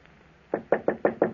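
Five sharp knocks on a wooden office door in quick, even succession, fairly loud, after a brief quiet moment with no voices.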